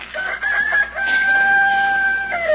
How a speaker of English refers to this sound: Pushy rooster. If I wasn't so sure from chasing chickens yesterday, I'd go out there and chase him right out of town.